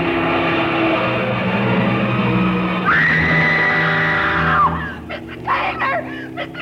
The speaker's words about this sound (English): It was no coincidence. The truck had tried to run me down, and it would have if she hadn't screamed.